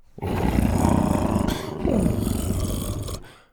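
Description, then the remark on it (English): A large animal named Buck purrs as the top of its head is rubbed, a deep, rough rumble in two long breaths separated by a short pause, fairly loud and heard alone with no voices. “Dr. Rex rubbed the top of Buck's head, and Buck purred.”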